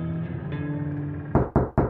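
Three sharp, loud knocks on a door in quick succession, following a low steady hum of background tone.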